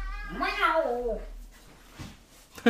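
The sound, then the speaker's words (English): A cat lets out one long, drawn-out meow, rising and then falling in pitch, while being put out of the room, followed by quiet and a brief soft knock near the end. “I had to get the cat out.”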